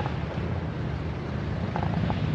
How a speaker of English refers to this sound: And I'd like to do it right under this plane.